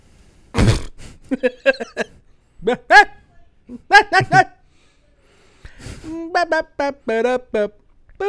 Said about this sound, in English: So yeah, that's the chihuahua barking.